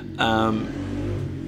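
A motorbike goes past the house, its engine giving a sharp, buzzing whine that quickly settles into a steady low drone for the rest of the brief moment, fairly faint overall.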